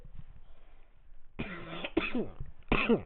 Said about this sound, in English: Don't cough into the my mic.